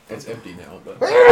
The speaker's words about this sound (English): Bless you, for you have sniz.